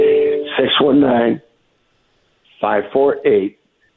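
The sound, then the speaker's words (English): Electronic phone tones from someone texting sound in two short bursts, a longer run of beeps, a pause of about a second, then a quicker trio of tones, fairly loud. “somebody's like texting him.”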